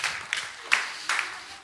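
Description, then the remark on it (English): Quiet, thin applause from a small group for the eternity holders, with a few sharper individual claps popping out over a steady hiss of hand noise. No one speaks. “Can we give our eternity holders a round of applause?”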